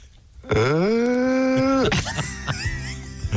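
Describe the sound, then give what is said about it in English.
A person vocally imitates a mating donkey: one loud, drawn-out groaning bray rising slightly in pitch, followed by shorter rough, sputtering vocal noises. “This is an impression of a donkey mating.”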